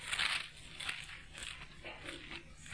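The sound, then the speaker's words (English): Many thin Bible pages rustle and flip at once as an audience turns to the book of Ephesians, a soft continuous papery crinkling with brief louder swishes, no voices. “This will keep you awake, if nothing else, turning the pages.”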